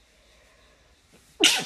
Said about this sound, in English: Hold on, I have to sneeze. So pardon me.